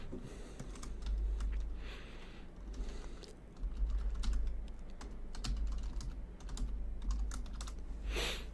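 Rapid, uneven typing on a computer keyboard while sending a quick message via Discord: a dense stream of sharp little clicks with brief pauses, over a steady low hum. No one speaks.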